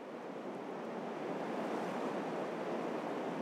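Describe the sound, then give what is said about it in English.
A steady, loud rush of Colorado River water flowing in Arizona, just downstream of a gigantic dam and the Lake Powell reservoir, a continuous broad hiss and roar with no breaks and no voices. “That's why I've made this trip to the Colorado River in Arizona.”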